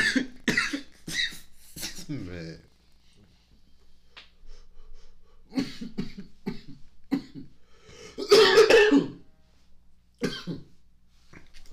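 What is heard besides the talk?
repeated coughing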